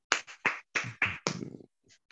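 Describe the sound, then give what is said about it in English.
A quick run of sharp, loud hand claps from a group giving God a hand clap at a Royalty Ministries Bible study, about six bursts in an uneven rhythm, then trailing off into a couple of faint scattered claps. No one speaks. “Now, of course, give God a hand clap if you would.”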